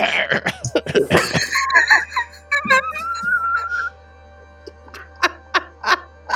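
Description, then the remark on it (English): A person voices an exaggerated hairball hack: a run of raspy coughs and gagging bursts with squeaky strained tones, a brief pause, then a few short sharp hacks to finish. “Alabaster dutifully coughs it out and then hides his face.”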